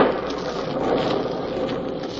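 Steady, even rainfall hissing continuously throughout, a dense wash of drops with no pauses or distinct bursts. Moderately loud, with no voices and no clear thunder.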